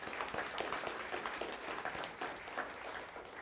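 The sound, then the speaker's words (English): A church audience breaks into steady applause for the church having closed on the purchase of its building, many hands clapping in a dense, continuous patter at a moderate level, with no one speaking over it. “Yep, we can clap for that too.”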